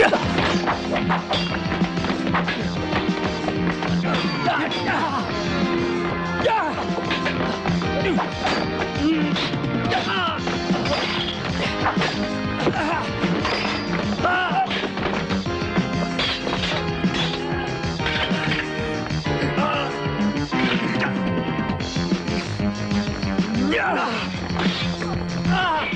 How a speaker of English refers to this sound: So just to end on a bit of a high, here is some of that classic synth whilst people are punching each other.